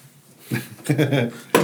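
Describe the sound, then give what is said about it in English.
Muffled voices murmur, then a man's chair lets out a single sharp popping creak near the end, short and abrupt. “That pop. That was his chair.”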